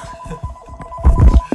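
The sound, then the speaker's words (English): A phone rings with a steady electronic ringtone, sustained tones over a throbbing low pulse that swells louder toward the end of the short burst. No one speaks. “Okay, the phone is ringing. Why is my phone ringing?”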